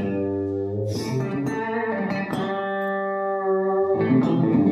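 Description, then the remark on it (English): Chicken picking on a Telecaster electric guitar, fingernail digging into the strings: bright, clucking plucked notes and short bursts, then a sustained ringing note before more quick picked phrases, with no voices. “And the main thing about chicken picking, you can chicken pick with anything, but you know, a Telecaster is like a.”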